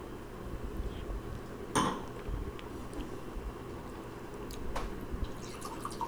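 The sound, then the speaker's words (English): Wine is poured into a glass, just a little splash: a soft trickle and gentle splashing, with a brief clink of glass near the start and another faint tap later. “So if you have your wine, go ahead and finish off the cup, and then we're going to pour a new glass.”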